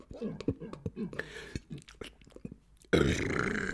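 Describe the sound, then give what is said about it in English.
A loud, drawn-out burp erupts after a few seconds of quiet mouth clicks and breaths, rumbling steadily until the end. “Pardon me, folks. You know, it's pretty disgusting, I have to admit.”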